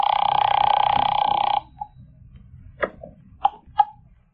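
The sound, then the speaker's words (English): A telephone rings in one loud, sustained burst lasting about a second and a half, then stops, followed by a few sharp clicks and clatters like a handset being picked up. “He won't answer. It's ringing.”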